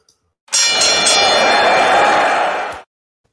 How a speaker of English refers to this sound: So, all right, let me ring the bell, and we'll get underway.